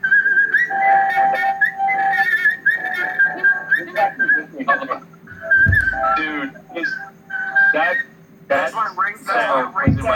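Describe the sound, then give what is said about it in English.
A whistled phone ringtone plays a bright, high-pitched melody of sustained notes and quick trills, repeating its phrase over several seconds while voices and a few thumping noises sound underneath. “that's his ringtone”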